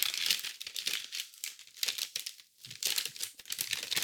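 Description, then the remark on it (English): Crinkling plastic from an MRE bag being handled while the meal is prepared with its heater bag, a steady run of sharp, papery crackles and rustles that rise and fall in bursts over about four seconds, with no talking. “Slide the heater and MRE to the bottom.”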